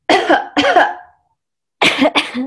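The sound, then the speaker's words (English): Several loud coughs, done as a pelvic floor check, come in two quick pairs, separated by a brief pause of silence. No one speaks. “Now, the next one that I want you to do is I want you to cough.”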